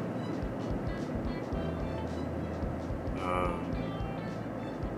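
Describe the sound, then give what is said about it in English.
Steady outdoor traffic noise, a continuous low rumble and broad hiss, with one vehicle swelling louder as it passes partway through before the wash settles back. “Man, there's a lot of traffic out today.”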